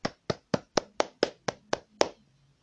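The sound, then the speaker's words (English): A single person claps their hands nine times at a steady, fairly quick pace, each clap sharp, with a short quiet pause after the last one; the person is clapping for themselves in celebration. “Yes, I'm clapping for myself.”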